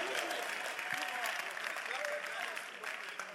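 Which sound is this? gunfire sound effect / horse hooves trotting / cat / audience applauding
audience applauding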